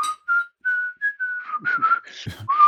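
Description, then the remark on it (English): Someone whistles a short song melody, a string of clear sustained notes that turn breathy and sputtery toward the end, with no talking. “I can't whistle.”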